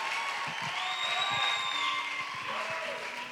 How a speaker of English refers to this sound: Clap for her as she goes.